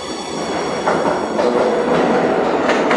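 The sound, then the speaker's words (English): A 4 train on the subway rumbles steadily along the rails, loud, with a dense continuous roar and faint metallic clatter and squeal layered over the noise. “I'm about to catch the 4 train.”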